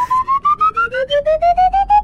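whistling

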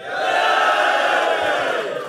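audience cheering

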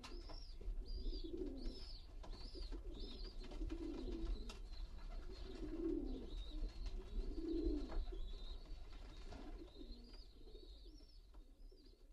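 pigeons cooing

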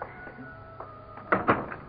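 door opening

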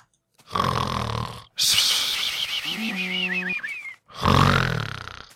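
snoring

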